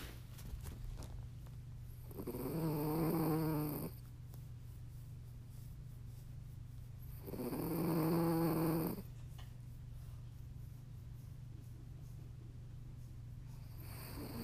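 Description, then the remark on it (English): A puppy snores, two slow drawn-out snores a few seconds apart, each with a raspy rising buzz, over a steady low hum. “I really hope that that snore was picked up.”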